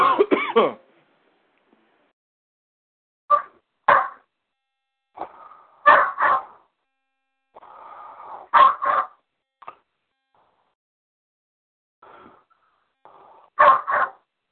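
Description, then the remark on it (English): A dog barks repeatedly in short, sharp bursts, some in quick pairs, with irregular pauses between them. The barking is loud, and no one is talking. “The dog is not happy. Yeah, and which one is that that's barking?”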